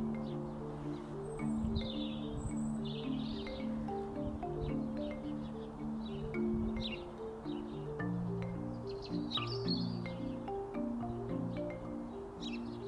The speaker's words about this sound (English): And there are little finches and tits everywhere.